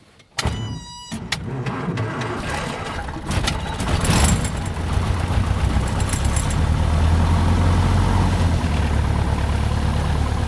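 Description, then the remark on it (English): A light aircraft's piston engine whirs briefly as the starter cranks, then catches and settles into a loud, steady idling rumble, with no voices. “Ignition on. Clear prop.”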